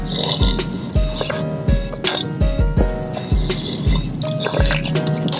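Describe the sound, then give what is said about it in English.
Someone slurping hazelnut coffee while on the road: a steady run of wet, bubbly sips and gulps with short liquid pops about every half second, fairly loud, with no talking. “Let me go ahead and get this on the road hazelnut slurp it real quick.”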